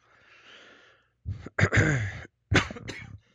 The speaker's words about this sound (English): Oh, we got a cough.